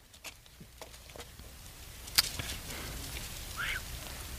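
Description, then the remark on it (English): Soft, steady rain patters in the background, a dense hiss dotted with scattered droplet ticks and one sharper tap; no one speaks. “Yeah, I'm loving this rain because our house smells so smoky, you know, and it's just kind of, it's wetting down the hills and hopefully getting rid of that.”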